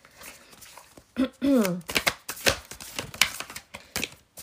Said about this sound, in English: I love the sound of shuffling cards. Not when I shuffle, when other people shuffle, really. It's, like, very soothing, like ASMR, almost, yeah.